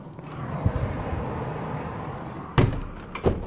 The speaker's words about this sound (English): I don't know how much of that you heard, but it's quite noisy out there with all the cars and in the traffic, and you know, the noise of a city of Belfast.